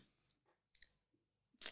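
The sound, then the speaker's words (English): A crisp crunch as someone bites into the brittle shell of a vanilla cannoli, with a few small cracking sounds leading up to one loud, bright crackling bite at the end. “Oh, that was a good crunch.”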